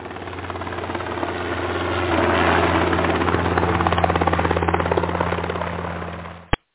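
A private helicopter flying to the Hamptons. Its rotor thumps in a rapid, steady beat over a deep engine drone, swelling louder as it passes overhead and then cutting off abruptly.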